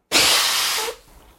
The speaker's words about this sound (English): I confidently blow my nose, guys. And I do that at work, and I don't think I'm disturbing at all.